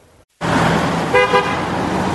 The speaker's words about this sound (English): Lots of honking on Beach Avenue in Vancouver today, and a lot of drivers asking, why did the geese cross the road?